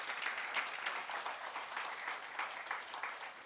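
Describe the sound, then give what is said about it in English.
Steady, sustained applause from an audience clapping to encourage a group of people, a dense wash of many hands clapping at a fairly even level throughout, with no voices standing out. “Keep clapping. They need all the encouragement in the world.”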